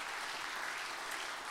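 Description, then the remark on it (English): A crowd claps steadily, a dense wash of many hands blending into continuous applause with no individual claps standing out and no voices above it, clapping hands to the Lord at an evening gathering. “Let's clap our hands to the Lord in this place tonight.”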